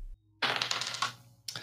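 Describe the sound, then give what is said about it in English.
Dice clatter and tumble across a hard table in a quick burst of rattling clicks, then a brief second clack as they settle. Fairly loud, with no talking. “Roll that dice.”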